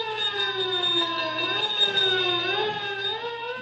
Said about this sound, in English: Sirens wail as squad cars race toward the scene of the explosion.